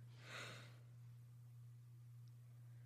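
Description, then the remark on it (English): A single short, breathy yawn rises and fades within the first second, followed by quiet. A steady low electrical hum runs underneath throughout. “I yawned.”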